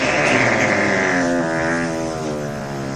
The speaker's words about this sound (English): So I fart on Derek for that.